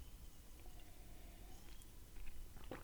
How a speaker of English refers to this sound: Let's get in for a sip. Oh, yeah, one more.